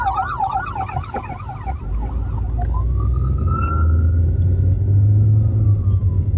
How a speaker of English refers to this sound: Pull over for the ambulance.